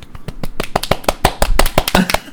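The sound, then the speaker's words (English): A short burst of hand clapping from a small group, sharp uneven claps coming quickly one after another for a couple of seconds, fairly loud with no voices over it. “That was us giving you a round of applause.”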